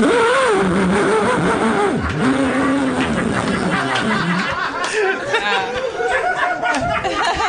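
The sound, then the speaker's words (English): A man's voice mimics a chainsaw with a loud, continuous buzzing drone that revs and wavers in pitch, while chatter and chuckles from other people sound underneath. “Chainsaw.”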